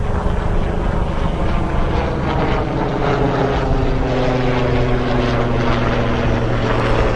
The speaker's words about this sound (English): Not too obnoxious. Hold on. All right, a couple things, because the helicopter went by.